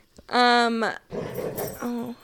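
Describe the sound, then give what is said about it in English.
A dog, Lincoln, lets out a playful growl, fairly loud: a long whiny grumble, a rougher breathy stretch, then a shorter grumble at the end. “That was a playful growl for those of you just hearing it.”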